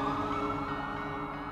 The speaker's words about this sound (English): Just as I got through the mess, here came the red lights and sirens around the bend.